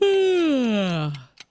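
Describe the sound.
A person fakes a long, loud yawn, acting out what one does when tired: a voiced groan sliding steadily downward in pitch for over a second, ending with a short breathy exhale.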